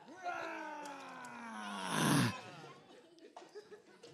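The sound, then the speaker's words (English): A group of children roar together like lions on a count of three, a drawn-out chorus of voices that swells into one loud, breathy peak before trailing off into scattered murmurs. “Lions, roar and go on, see if those... Go on, give them a big roar again.”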